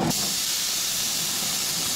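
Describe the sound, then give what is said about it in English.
A loud, steady sizzle of a burger patty on a hot grill, fat dripping down and causing flames to come up, a continuous hissing crackle held for the whole moment, with no talking over it. “Throw this puppy on the grill. Sizzle. Definitely sounds like a burger and even smells like it.”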